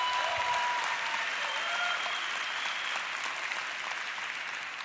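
An audience claps in a steady round of applause, a dense, even patter of many hands that stays loud throughout and eases off slightly toward the end.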